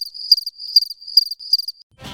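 A cricket chirps close and clear, its high, thin trill pulsing in four quick bursts at a steady rhythm before cutting off into a brief rush of noise.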